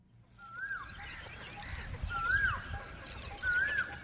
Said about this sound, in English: This is a rare thing in Delhi these days. The cacophony of hundreds of birds gathered in and around a pond on the northern edge of India's sprawling capital region.